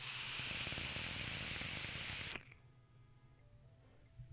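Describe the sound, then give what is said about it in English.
A steady hiss of a vape coil firing a homemade cheesy lemon cheesecake e-liquid made from a Vaping Trucker recipe, threaded with fine crackling pops, runs for about two seconds and then cuts off abruptly. “Plus, listen to that crackle, baby.”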